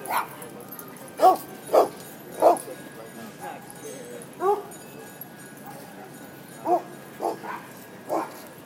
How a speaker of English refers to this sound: It's an angry wolf dog. Why was he barking, said the little girl.